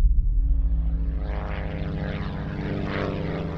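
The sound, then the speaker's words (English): A small propeller plane, piloted by Bruce Gernon with two passengers aboard, flies from the Bahamas to Palm Beach through the Bermuda Triangle. Its engine drones steadily, a dense low harmonic hum with a buzzy whine above, sustained without pause and no voices present. “One day, pilot Bruce Gernon was flying a small plane, his father and a business partner in the seats beside him.”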